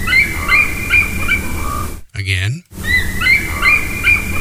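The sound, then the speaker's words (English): Bald eagle calls recorded at Yellowstone National Park in Wyoming: thin, high-pitched chittering notes in quick repeated series over a steady noisy background, broken midway by a single short spoken word before the calling resumes. “And that was the bald eagle.”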